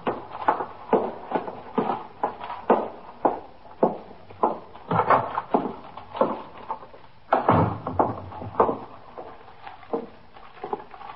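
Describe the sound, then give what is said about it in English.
At 3:15 a.m. a man carrying a paper bag walks in the front door of a police station house and climbs the stairs: a steady run of footsteps on wooden stairs, fairly loud, with a heavier door-like thud partway through; no one speaks. “Carrying a paper bag, he walked in the front door of the station house, through the back room, and up the stairs to the 21st Detective Squad.”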